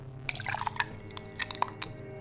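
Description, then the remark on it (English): Whiskey pours and splashes into a glass, with several bright clinks and drips scattered over a couple of seconds, fairly quiet and without any voices. “One night, I kept thinking while sipping a glass of whiskey.”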